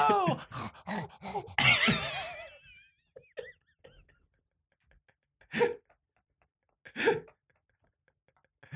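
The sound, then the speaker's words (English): A person imitates a dog with a burst of whining, yelping vocal sounds, followed by a quiet pause and two short, sharp bark-like huffs spaced a second or so apart. “The noise for the dog was perfect.”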